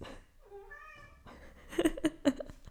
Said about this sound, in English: Clearly my cat wants more attention because he's meowing at me right now.